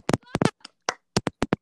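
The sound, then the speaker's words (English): A handful of sharp hand claps to close a segment, uneven at first and then a quicker run of four at the end, with some brief vocal sounds mixed in among the early claps. “I'm clapping, but I'm dead.”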